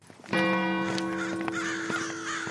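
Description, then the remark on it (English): A crow caws harshly, a loud, sustained nasal call that starts abruptly and holds for about two seconds, with other caws overlapping faintly, outdoors after sunset as crows fly around on the approach to Madingley Hall. “The sun is down, there are crows flying around”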